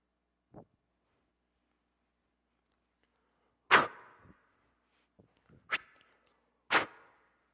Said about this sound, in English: Those are arrows.